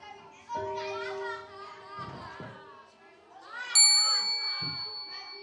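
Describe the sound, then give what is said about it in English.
A doorbell chime rings out once, bright, its tones ringing on and slowly fading while children chatter and play, around midday. “We'd just put the children down for their afternoon nap when we heard the chime.”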